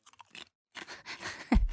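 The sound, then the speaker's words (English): Crisp crunching of crisps being chewed, a few quick bites at first, a short pause, then denser chewing with a louder crunch near the end. No talking. “Good crunch.”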